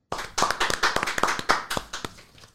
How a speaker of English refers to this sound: Can I get a round of applause, everyone?